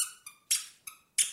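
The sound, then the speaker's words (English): A clown nose from a clown school uniform squeaks five times in quick, uneven succession, sharp, some squeaks clear and whistly, others breathier and rougher. No voices are heard. “The nose squeaks.”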